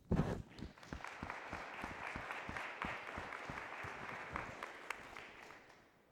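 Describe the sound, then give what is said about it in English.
A church audience standing up during a sermon breaks into sustained applause, dense overlapping claps holding steady for several seconds before gradually thinning out, with no voices standing out. “I like to get people standing up and clapping.”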